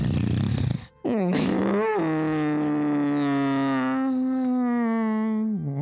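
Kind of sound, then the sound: vocal imitation, voice imitating loud snoring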